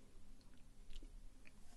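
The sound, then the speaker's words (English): Quiet sipping of beer: soft wet mouth clicks and a small swallow over low background hum, with no talking. “Anyway, I take another sip of my beer here.”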